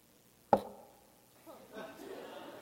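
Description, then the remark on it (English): A single sharp knock on a door, a loud abrupt thump with a brief ringing tail. Faint voices murmur in the background afterward. “Do you ever have anybody knock on your door like this?”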